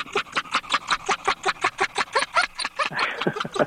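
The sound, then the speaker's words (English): A dog pants in quick, steady breathy huffs, roughly five per second, a rhythmic laugh-like panting that stays fairly loud throughout with no talking over it. “Can we play that audio of the dog laughing?”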